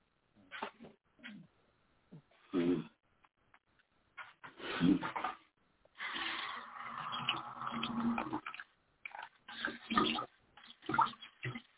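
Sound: pouring water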